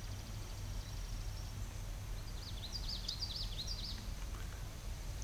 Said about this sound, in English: That sounds like a yellow throat. Were you near water there? Yes. Oh, there you go. Yeah, probably a common yellow throat. Ooh. Yeah, which is a beautiful little warbler, you know. A black eye mask, yellow throat, obviously.